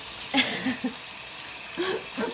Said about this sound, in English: I'm laughing because I literally just flushed the toilet because I just went pee, and now I'm going to wash my hands.